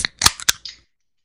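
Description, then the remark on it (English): A can of PBR beer cracks open: a couple of sharp metallic clicks and a crisp pop, followed by a short, soft fizzing hiss that quickly fades. No one speaks. “So let's crack it open.”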